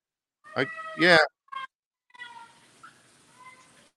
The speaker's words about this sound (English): Yeah, it sounds like your internet. You're just cutting in and out.